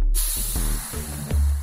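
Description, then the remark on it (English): A steady, airy hiss of steam rising from a very large bowl of warm water into which bakers put malt syrup and yeast for making bagels, continuous for the whole moment, with a low hum underneath and a couple of brief soft bumps partway through. “In just a second, you'll see and hear steam rising from it.”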